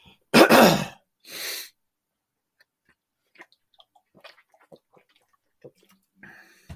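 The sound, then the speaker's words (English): Two loud coughs in quick succession, then a quiet stretch of soft clicks and faint gulps as someone sips water. No one speaks. “Let me cough and take a drink of water first.”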